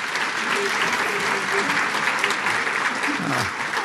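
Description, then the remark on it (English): Sustained audience applause for the panelists at the Celebrate What's Right event, a dense, steady wash of clapping at an even loudness throughout, with a faint murmur of voices underneath. “Please, another round of applause for our amazing panelists.”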